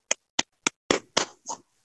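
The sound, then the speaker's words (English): A brief burst of applause: about six separate, evenly spaced hand claps, the first ones sharp and crisp, the last few slightly longer and smeared. No one speaks. “Round of applause, my fine fellows.”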